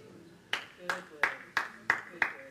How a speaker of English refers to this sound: Thank you. Shame not everybody clapped, because that is so life-changing.